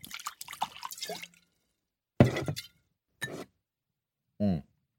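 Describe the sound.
A voice speaks briefly, then rosé wine is poured into a glass in a few short splashing bursts, ending with a quick gurgle that rises in pitch as the glass fills.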